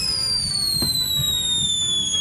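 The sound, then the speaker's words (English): A firework rocket whistles with a shrill, steady tone that glides slowly downward in pitch as its burning layers of organic salt and potassium release gas, accompanied by a brief sharp crack partway through and low rumbling noise underneath. “As each layer burns, it slowly releases a gas, creating the whistling sound associated with most firework rockets.”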